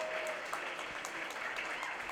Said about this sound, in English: Can we give a big round of applause for everyone that presented here tonight, all the 11 speakers?